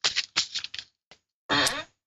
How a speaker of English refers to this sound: What are you doing? It's so loud. It shouldn't be. It is really loud. I'm looking for some paper.